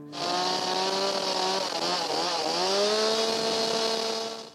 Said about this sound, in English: Newman fired up the chainsaw.